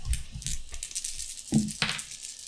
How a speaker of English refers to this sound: All right, roll the stealth. Do I roll my dice? Yeah, sure.